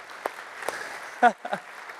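A brief, sparse round of applause: a handful of scattered hand claps at uneven intervals, with one louder burst in the middle, over a low background murmur.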